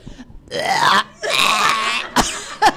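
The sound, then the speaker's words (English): A person forces out a deliberate, drawn-out fake burp in two long voiced pushes, loud, followed by a couple of short throaty bursts. “Okay, do a fake burp.”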